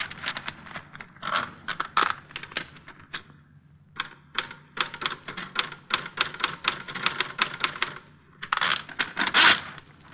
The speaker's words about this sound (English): Good 30 names here. Typed. There's a typewriter.